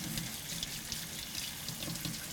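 Hot water runs steadily from a kitchen tap, a continuous hiss and splash filling a sink, with no one speaking.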